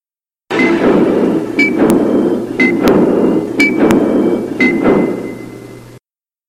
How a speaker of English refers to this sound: All right. So anyway, I mean, that clock sound is kind of one of the trademarks of 24. And so, I mean, when I hear that, I look, because I know that 24 is on somewhere.